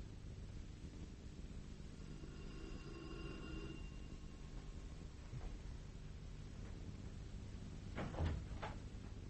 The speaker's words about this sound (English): I'm going to take this key, and I'm going to lock the door from the other side.